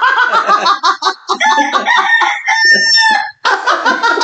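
A rooster crows loudly, its long strained call rising over a busy background of clucking hens, with no one speaking.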